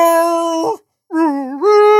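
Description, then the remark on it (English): Loud, drawn-out howling from a whole pack of dogs, in two bursts split by a brief silence; the second howl swoops, dips, then rises and holds a steady pitch. “Oh no, it's a whole pack. Yeah, they come in packs.”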